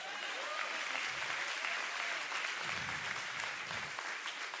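An audience claps together in sustained, dense applause, the hand claps blending into a steady wash of sound that stays loud and even throughout.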